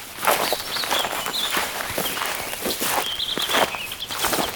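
Footsteps walking up to a table at a bird-ringing site, at a steady, slightly uneven pace, each step a soft crunchy scuff, with faint high bird chirps in the background and no talking.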